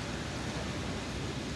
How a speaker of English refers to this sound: So if you look outside, I'm going to open this window. You can hear the rain. Hear the rain?